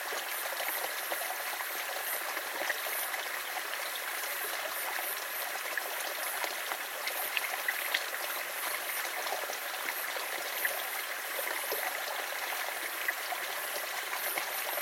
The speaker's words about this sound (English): The river's current sweeps them away.